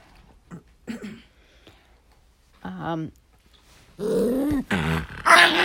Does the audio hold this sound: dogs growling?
yes